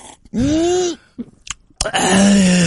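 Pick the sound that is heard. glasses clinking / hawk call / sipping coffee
sipping coffee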